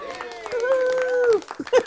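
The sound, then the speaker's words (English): A single voice lets out a long, sustained whooping cheer, held steady and then falling off, with scattered sharp hand claps around it and a couple of louder claps at the end; the guest is cheering for herself during a remote recording. “That was me cheering for myself because, you know, mate, we're doing this remote recording.”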